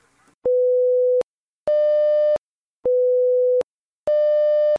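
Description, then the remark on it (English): An emergency alert app notification tone, heard on opening the app when the AMCON level is raised to level 3 during a training exercise: two alternating electronic tones, a pure lower beep and a brighter, buzzier higher one, repeating twice in a loud, steady pattern with short gaps and no voices. “So when the AMCON level is raised to level 3 during the exercise, this is what you'll hear when you open up the app.”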